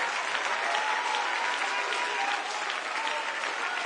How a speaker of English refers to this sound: If you believe today is your day for a miracle, I want you to put your hands together and clap them with everything you've got.